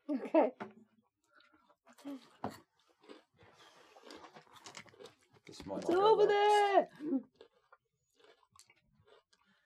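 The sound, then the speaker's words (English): Dice clatter and tumble across a surface in a quick run of small, sharp clicks lasting a few seconds, as a game master rolls a die behind a screen during a RuneQuest tabletop game, with a person speaking briefly before and after. “I'm going to roll a dice behind my screen, and that's how many rounds you'll be away before you realise that the danger is behind you.”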